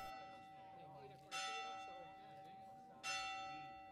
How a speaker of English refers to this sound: We sat in the village square, the church clock marking the time every quarter of an hour.